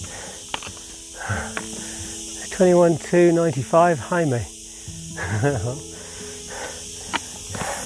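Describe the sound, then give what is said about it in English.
Cicadas buzz in a steady, high-pitched drone that fills the whole clip without pause, outdoors by ruins with an old well and a broken-down doorway, while a man talks over it in bursts. “Ooh, can you hear the cicadas now? They are kicking it.”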